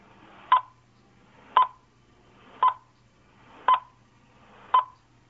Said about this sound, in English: So, we're going to stay quiet for, like, the next... I don't know, 8 seconds or so, and then you're going to hear the worst possible spoiler countdown sound effect in recorded podcast history.